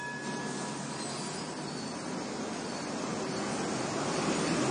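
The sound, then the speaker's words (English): A tram rattles along at full speed, a steady, loud rolling roar of wheels on rails with faint metallic squeals riding over it, building slightly toward the end. “tried to concentrate on maneuvering the tram at its full speed.”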